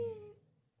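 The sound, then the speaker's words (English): A short, faint high whine from one of two whining dogs, a thin nasal tone that fades quickly into quiet low rumble, heard alone without any talking. “Now both my dogs are whining.”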